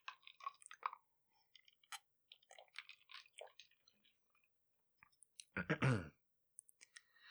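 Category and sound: food or drink, sipping water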